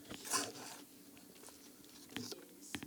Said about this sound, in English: Just give y'all a couple seconds while we sip on our coffee.